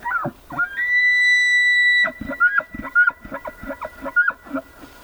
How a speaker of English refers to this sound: Back here in the U.S., the bugling of wild elk is part of what makes the Mountain West so special.